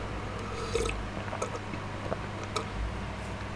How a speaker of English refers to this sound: I have to take a sip of this juice.